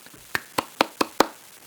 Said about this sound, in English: By the way, Rams fans, you want a slow clap?